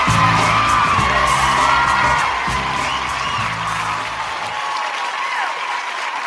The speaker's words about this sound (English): I can't hear you through all the applause. I know. Could you keep it down out there? We appreciate it, but we got a show to do tonight.